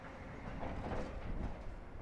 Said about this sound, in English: Those sounds are trucks hauling material from the Moab Uranium Mill Tailings Remedial Action Project. The U.S. Department of Energy is cleaning up around 16 million tons of uranium tailings here on the banks of the Colorado River